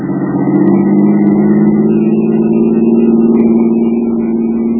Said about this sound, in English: The car came roaring up behind us, cut around in front, tore ahead at 65, jumped the light at the next crossing.